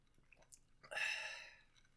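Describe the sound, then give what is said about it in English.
An airy slurp of someone sipping sweet tea mixed with generic bourbon, lasting about half a second and preceded by a few faint mouth clicks, with no talking. “what are you sipping on over there? A little sweet tea?”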